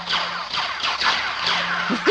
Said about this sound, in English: This is the second podcast in a row. His ringtone comes in.